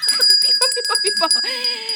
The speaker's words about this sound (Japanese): ピンポン でございます! The ant. Yes.